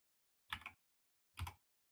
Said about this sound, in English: I can see Rick typing the next episode title, I guess.